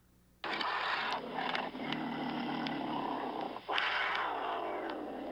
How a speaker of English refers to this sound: It was a mountain lion.